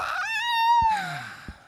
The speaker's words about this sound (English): That was him screaming in pain.